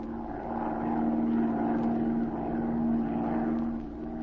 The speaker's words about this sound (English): Short time later, Zee and Patricia Norwood took off in Zee's plane and began to circle lazily over the city.